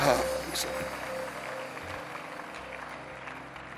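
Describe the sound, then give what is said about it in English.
A crowd claps steadily for a few seconds for the blessing of God, a dense, even patter of many hands mixed with murmuring voices, fairly loud at first and easing slightly toward the end. “Somebody clapping the blessing of God.”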